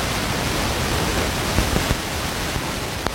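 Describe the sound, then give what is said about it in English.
Heavy rain pours down in a dense, steady roar during a match between Aughavas and Carrigallen, with a few sharper patters and splashes breaking through near the end. No voices are heard. “Bucketing down here.”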